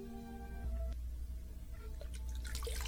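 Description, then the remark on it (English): Water runs and splashes at a sink as someone splashes water on their face to wake up late at night, with a dripping, watery spray that grows brighter and more splashy toward the end. No one speaks. “I'm going to go splash some water on my face.”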